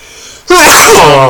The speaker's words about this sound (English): He sneezed.